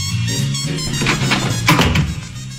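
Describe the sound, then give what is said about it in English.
A door-opening sound effect played on the Armstrong and Getty radio show: a heavy door swings open with a low, resonant creak and a few dull thunks, loud, lasting a couple of seconds with no voices. “Michael, play the door opening.”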